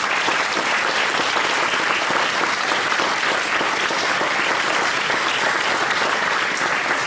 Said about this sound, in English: Firstly, can I thank all the young people from the Academy, from El Palm, from St. Michael's and for Hamburg for sharing their story and how important their school is to them. So can we give them one big round of applause?